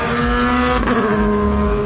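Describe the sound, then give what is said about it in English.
Loud, steady roar of a field of racing car engines during a race, including a number 65 Lotus, a number 58 Ferrari, another Ferrari and some 911s, their high harmonic whine filling the air, with a brief surge midway as the cars pass by at speed; no voices. “Here comes the field. That's Johnny Molum in the 65 Jet Alliance Lotus. 58 Ferrari, another Ferrari, some 911s.”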